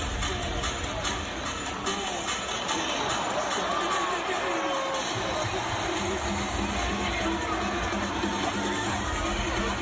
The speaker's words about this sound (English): They had the lights going in the crowd. The air horns were blowing. The place was getting fired up.